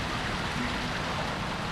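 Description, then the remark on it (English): Steady rushing water from a waterfall beside a pond where pink flamingos mill about pours continuously, a broad, even splashing roar, constant throughout with no voices. “I don't think that's the right term, but there's a gaggle of pink flamingos milling about beside their pond and their waterfall.”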